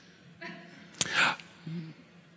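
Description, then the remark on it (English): A single sharp sneeze from someone with a cold, preceded by a brief intake and followed by a softer vocal murmur. “God bless you.”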